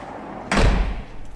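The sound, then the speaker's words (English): A heavy second door into an underground dry room, kept at 15% relative humidity and 18 degrees centigrade, swings shut with a single solid thud, its broad low rumble fading over a moment into quiet. “So you'll feel that change as we come through this second door.”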